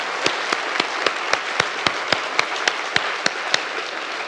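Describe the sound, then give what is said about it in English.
An audience gives a round of applause for a team's stable structure in a judged building challenge, a dense wash of clapping with a few sharp, evenly spaced claps standing out in a regular rhythm throughout, holding at the same moderate loudness with no voices. “Now, round of applause, please.”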